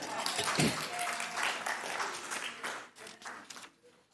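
A crowd breaks into steady applause, dense overlapping claps filling the whole stretch, loud at first and gradually thinning out as it fades toward the end.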